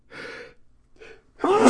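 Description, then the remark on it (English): Two breathy, rasping inhales build up, then a loud, explosive sneeze bursts out with a sharp voiced edge at the end. No one talks. “I'm sorry, man, sneezing away here.”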